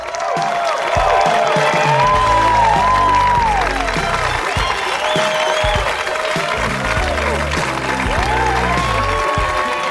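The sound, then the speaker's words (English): Loud, sustained applause from a comedy show audience as comedian Amy Miller is welcomed to the stage, dense clapping that fills the full ten seconds with scattered cheers and whoops rising over it, no one speaking. “Oh my God, thanks for clapping for so long.”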